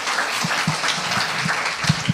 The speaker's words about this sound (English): Can somebody give God a hand clap of praise for my wife?